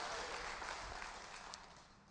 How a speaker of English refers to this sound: Go ahead and clap. Don't give me one of them kind of half-baked. Give God a good praise.